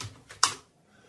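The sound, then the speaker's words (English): A few quick clacks of computer keyboard keys as a question is typed into ChatGPT, irregular in rhythm, with the last keystroke the loudest before the sound fades to quiet. No one speaks. “Fucking keyboard.”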